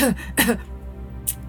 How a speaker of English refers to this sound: The chief pastry cook coughed nervously.